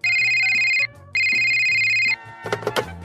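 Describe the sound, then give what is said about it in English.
A telephone rings twice in loud, steady electronic bursts separated by a short pause, followed by a brief clatter of handling or clicks as the call seems to connect. “Okay, I'll connect you right away, but this is the last phone call I'm connecting.”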